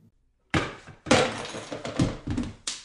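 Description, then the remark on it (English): A heavy thunk starts a loud, clattering crash of objects tumbling and banging, with several rattling impacts and a final knock as things settle, no voices present. A shelf is knocked over and pulls a sheet off a machine. “Which knocked over a shelf, which pulled a sheet off of a weird machine.”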